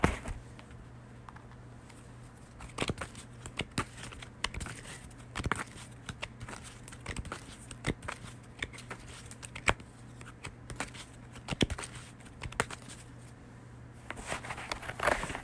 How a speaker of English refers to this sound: Okay. So let me shuffle the cards.